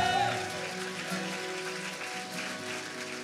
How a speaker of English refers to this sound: If you believe it today, would you stand to your feet and let's give God the best cheer we have all day. Come on, if you receive his word today.